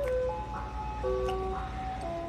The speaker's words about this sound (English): This ice cream truck is more real than God.